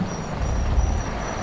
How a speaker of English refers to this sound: The air brakes hissed and blew dust into my eyes.